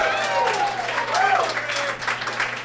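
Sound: audience applause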